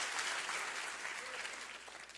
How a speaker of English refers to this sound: I belong to Jesus Christ. I'm a child of the King. Can you clap for that right now?